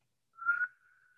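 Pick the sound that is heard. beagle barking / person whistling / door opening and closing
person whistling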